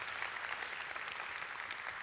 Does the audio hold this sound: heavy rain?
no